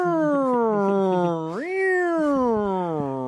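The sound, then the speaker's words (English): A single long, drawn-out cat meow, loud, sliding upward into a higher wail midway before slowly falling again, with no other sounds around it; the cat meows out the window of a police car. “The cat is driving the cop car, doesn't know how to work the siren, so just meows out the window.”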